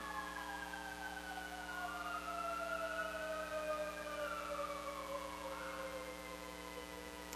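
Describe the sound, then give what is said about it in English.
Ambulance sirens wail continuously, several rising and falling tones overlapping over a steady engine-like hum, staying loud throughout as they pass by, with no one speaking. “and the ambulances. We'll let them go by.”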